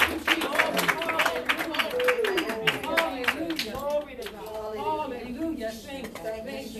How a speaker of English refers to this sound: one more time with the clapping of your hands and the raising of your voice.